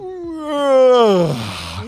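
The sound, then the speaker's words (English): A long, loud voiced yawn whose pitch slides steadily downward, swelling in the middle and trailing off into a breathy exhale, with no talking. “That's a big yawn.”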